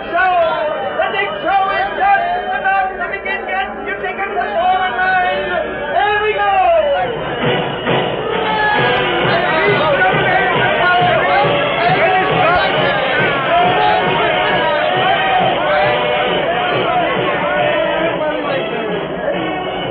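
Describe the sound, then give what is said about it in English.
Dense crowd chatter on a circus lot blazing with lights just before opening, crowds jammed around the sideshow, the menagerie and refreshment stands; many overlapping voices form a steady, loud babble that fills the whole scene without pause. “It was just before the time for the opening, and crowds jammed the sideshow, the menagerie, and the various refreshment stands.”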